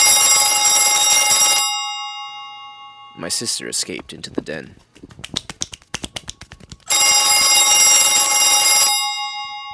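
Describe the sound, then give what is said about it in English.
A loud, shrill telephone in a kitchen rings in two long, piercing bursts, harsh as a fire alarm. Between them, a voice speaks briefly, followed by a quick run of sharp snapping clicks. “My mother's hard of hearing, so our telephone sounds like a fire alarm.”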